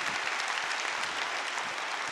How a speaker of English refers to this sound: And I'm stoked to let you know that last month we celebrated our 6th birthday as a faith community. Yeah, you can clap for that too.